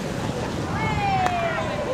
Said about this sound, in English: These are the sounds you might hear strolling through Montreal's labyrinth of underground corridors that connect the city's subway stations. They're lined with boutiques, cafes, fast food joints, and even art museums, creating a subterranean mall